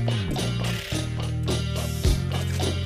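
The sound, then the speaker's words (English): Steady mechanical clicking of a time clock ticks along at a regular pace over a loud, low droning hum that shifts pitch twice, with no voices. “Or it could be the time of the time clock clicking.”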